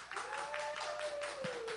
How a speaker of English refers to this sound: So please, y'all, give Mr. Howie Hawkins a warm New Orleans applause.